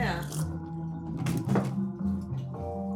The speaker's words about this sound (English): It's called punching. Yeah. And it's got that nice thumping sound. Like now let's see if you can do it. No, it's been a long time. Can you do a punching balloon? There you go. Yeah.